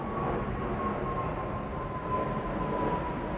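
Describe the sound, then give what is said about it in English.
A steady, rumbling roar of an airplane flying overhead, fairly loud and unbroken throughout, with a thin high whine riding on top and no voices. “I'm not saying, oh man, I got that plane flying over.”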